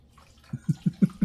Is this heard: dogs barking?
no